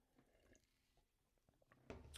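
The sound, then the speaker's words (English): Someone drinking water, with quiet wet sips and a few soft swallows, ending in a louder gulp. No one speaks. “It was just me taking a drink of water.”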